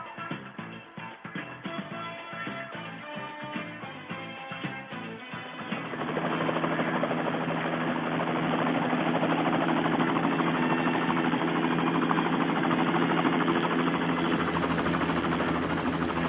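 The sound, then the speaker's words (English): A short burst of music gives way to the loud, steady roar and thrum of black helicopters passing overhead, sustained without letup until the end, with no one speaking. “As the black helicopters swarm, welcome to hour number three of Bill Mick Live.”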